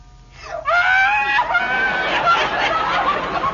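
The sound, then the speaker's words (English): A hungry baby bursts into loud crying at its 4 o'clock feeding time, a rising wail that settles into a continuous, strained bawl, with no pauses and no talking. “Oh, that's not a baby, it's a time bomb. Well, it's not his fault. He's hungry.”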